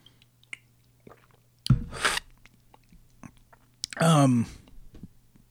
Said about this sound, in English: And hang on, I got to take another sip of water. Apologize.